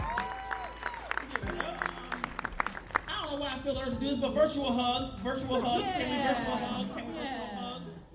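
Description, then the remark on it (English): An audience claps loudly with dense, rapid, overlapping hand claps after a short story reading, and after a few seconds a mix of voices and cheering rises over the continuing applause. “Clap it up for them.”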